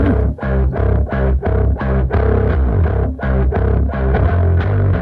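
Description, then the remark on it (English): A rock song with a heavily distorted bass guitar driving a steady, chugging rhythm, loud, with regular punchy attacks throughout and no voices. “This is one of my favorite bass tones.”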